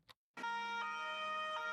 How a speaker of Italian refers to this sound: La sirena della polizia. Questo lo uso ogni volta che faccio entrare un agente della polizia.